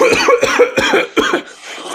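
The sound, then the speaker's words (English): A quick run of four harsh coughs in rapid succession, loud and raspy, trailing off into a breathy wheeze at the end. “Nasty gonna, cough there.”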